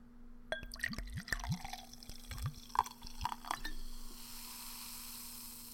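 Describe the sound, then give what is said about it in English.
Fizzy grapefruit soda glugs and splashes as it's poured into a hand-held glass, with bubbly gurgles and drips, ending in a soft steady fizz. “Let's go ahead and see the pour.”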